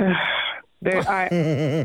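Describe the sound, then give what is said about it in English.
A woman on a phone call with radio hosts lets out a sharp, breathy gasp of surprise, pauses for a moment, then breaks into a loud, wavering, excited cry. “I just love the gasps, the moans, the groans that we seem to get almost on a daily basis.”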